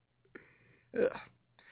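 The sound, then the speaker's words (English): A single short burp bursts out loudly, preceded by a soft, drawn-out vocal murmur and followed by quiet. “With a burp there. I apologize.”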